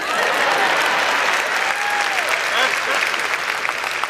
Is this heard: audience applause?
yes